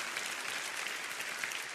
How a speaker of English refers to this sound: Come on, clap your hands real big around here.